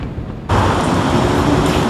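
Strong wind and surf roar at English Bay in Vancouver during an evening windstorm. A low rumble swells after half a second into a loud, steady, hissing wash of noise, with no voices.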